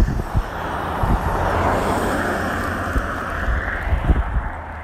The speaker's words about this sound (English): Where's that car come from?